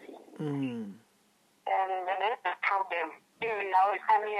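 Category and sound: fault, phone line breaking up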